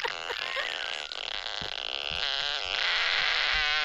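A loud, buzzy fart sound effect from a sound machine app, picked from its toilet paper roll of fart sounds. It rumbles on for about four seconds, its raspy pitch wobbling and fluttering throughout and swelling slightly toward the end, with no talking.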